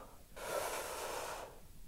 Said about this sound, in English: Everybody take a deep breath in. And hold it. Ready? One, two, three, go.